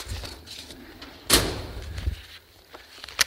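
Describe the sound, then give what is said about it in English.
A full top drawer is pulled open, with a sharp wooden knock followed by a low, rumbling slide and a small click near the end. It is moderately loud, with no talking. “So this drawer is pretty full. I mean, you could pull out some of the stuff that's in here.”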